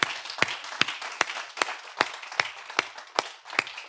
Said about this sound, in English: And so today, with that being said, as my introduction, I would like to give our mothers a huge hand clap this morning, if you would join me.